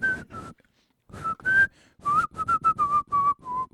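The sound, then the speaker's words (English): A person whistles a catchy pop tune in short bursts of quick notes, pausing between phrases, then a faster run of staccato notes that slightly falls in pitch. “I can't whistle that rapidly, I just realized.”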